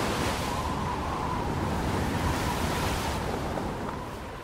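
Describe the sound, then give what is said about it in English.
Waves crash against sharp rocks at the foot of a 300-foot cliff by a lighthouse at the end of Britain, a continuous, heavy roar of surf with a steady wash of wind over it, loud and unbroken throughout, with no voices. “It's a 300-foot drop to sharp rocks and crashing waves.”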